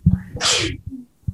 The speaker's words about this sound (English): Bless you. Bless you.